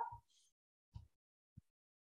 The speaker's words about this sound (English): Sorry, these dogs went off. One moment.